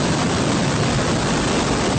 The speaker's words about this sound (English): A SpaceX Falcon 9 rocket carrying supplies to the International Space Station blasting off from Cape Canaveral yesterday afternoon.